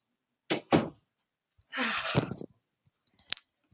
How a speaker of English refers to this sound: Okay, I'm shutting the door.